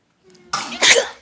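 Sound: sneeze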